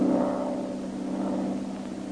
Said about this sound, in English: Well, even as he talked with the Dragon Lady, a single-engine plane was heard high overhead.